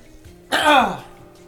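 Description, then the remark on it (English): A single rough throat clearing into a microphone bursts out loudly and fades within half a second, with quiet background hum before and after. “Had to clear my throat on microphone.”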